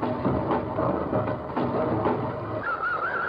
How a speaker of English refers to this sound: What you're listening to right now is his Étude au chemin de fer, a piece solely comprised of different train sounds.